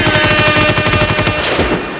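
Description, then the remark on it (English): Rapid bursts of automatic gunfire rattle off in a fast, steady rhythm, loud, with no one talking over it before it trails off at the end. “Can I get some gunshots?”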